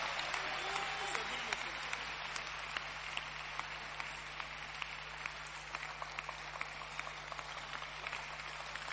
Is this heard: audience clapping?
yes